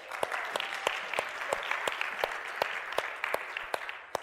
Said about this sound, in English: You know, it's okay to clap here. So those awkward, like, and then everybody starts coming in eventually. You know, we can just give the Lord a hand. It's okay.